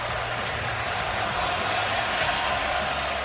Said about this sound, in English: the most memorable moment of the night was probably the crowd twice chanting at Shohei Ohtani during his at-bats.